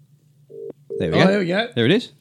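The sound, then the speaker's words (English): A brief electronic ringback tone of an outgoing phone call sounds twice over a low steady hum, then a voice starts talking loudly over the line. “It's ringing.”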